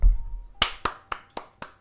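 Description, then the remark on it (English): Five sharp handclaps in a steady, slightly slow rhythm, each a crisp smack with a quick decay and no voices. “Everybody clap.”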